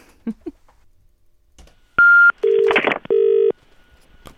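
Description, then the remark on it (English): A few soft clicks, then a short high beep followed by two steady, lower telephone tones as a call from Dublin, Ireland, is placed to Buckingham Palace and rings through on the line, with no voices. “So what we decided to do, or what we will do, is just give them a quick buzz and see if we can get through to anyone.”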